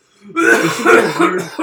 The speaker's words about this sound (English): God, excuse me. This whole episode is going to be me coughing.